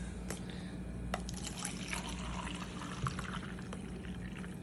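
Liquid pours steadily into a large cup, a continuous splashing gurgle lasting several seconds, with a few brief sharper splashes and clinks along the way and no talking.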